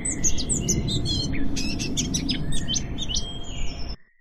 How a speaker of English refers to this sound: It's like just past dawn. Cool. There's dew glistening on the grass. Birds are beginning to sing.